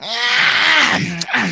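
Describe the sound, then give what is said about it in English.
A person imitates a cat yawning with a drawn-out, nasal, falling vocal sound, fairly loud, ending in a brief breathy tail. “Nomu's making his way up the stairs and cat yawning.”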